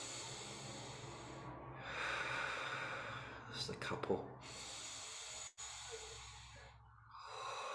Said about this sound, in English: It's always good to just do a few breaths where you're really thinking about breathing, just deep, deep breaths.